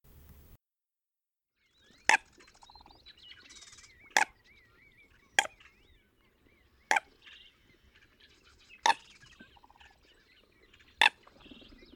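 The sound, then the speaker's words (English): American coots give about six loud, sharp, squeaky-toy calls at irregular intervals, with softer warbling bird chatter continuing in the background between them. “These squeaky toy-like sounding birds are often mistaken for ducks, but they are actually American coots.”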